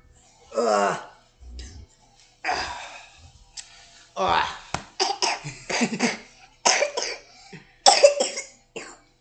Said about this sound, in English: Just to let you know, he's just got a cough. It's nothing else.